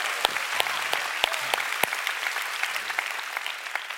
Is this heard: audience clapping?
yes